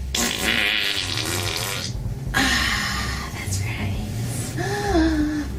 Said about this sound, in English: Here, we'll waft it to the back row. See if it's hard to fart on command.